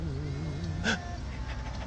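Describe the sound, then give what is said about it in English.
A person imitates a panting dog, a short whiny, whimpering vocal sliding around before one sharp, breathy huff, with no words spoken. “Dude, you just became a dog.”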